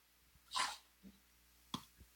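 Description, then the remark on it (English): A dog gives a sharp, loud bark, followed by a few shorter, softer yips and a second bright bark, with no talking. “Hold on a second. I have to yell at some dogs.”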